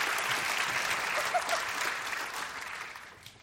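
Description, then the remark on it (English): An audience applauds steadily as panel speakers are introduced and take their places, a dense wash of clapping that stays fairly even and then tapers slightly toward the end, with no clear voices over it. “Folks, you are doing so well in the applause department that I really appreciate that I'm not even asking for the applause.”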